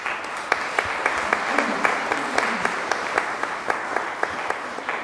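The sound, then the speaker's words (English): A church audience bursts into a steady round of applause to welcome new members, many hands clapping in a dense, even wash with sharper individual claps popping out, sustained for several seconds without anyone speaking. “Please welcome our new members with a round of applause.”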